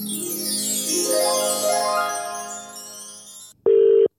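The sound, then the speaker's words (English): A busy musical passage with sweeping tones stops abruptly, followed by one short, loud burst of a steady telephone ringing tone, as heard on an outgoing call to a mother-in-law. No one speaks. “It's ringing.”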